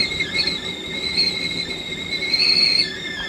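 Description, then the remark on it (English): A stovetop kettle of water comes to the boil for a pot of tea, whistling continuously at a high, piercing pitch, the shrill tone wavering slightly and swelling louder toward the end before easing off, with no talking. “A good high-pitched whistle to let me know that it's boiling well.”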